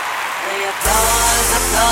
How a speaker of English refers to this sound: I think we should have an applause track in there or something. We should.